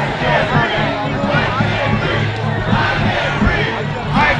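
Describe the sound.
A large mob chants the Black Lives Matter slogan "I can't breathe" sarcastically in unison, loud and insistent, many voices rising and falling in a steady repeated rhythm over a constant roar of background shouting.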